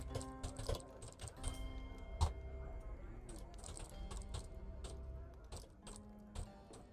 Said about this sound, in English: I was typing a sign.